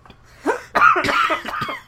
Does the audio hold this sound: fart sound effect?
no